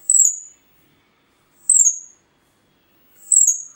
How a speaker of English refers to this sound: It lives in forests, but often visits gardens. It doesn't lay a dozen eggs at a time, just an ordinary 2 or 3. This is what a pale-billed flowerpecker sounds like. These are some teeny sounds from teeny birds.